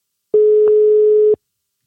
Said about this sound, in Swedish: Då ska jag ringa. Vi ringer Anders.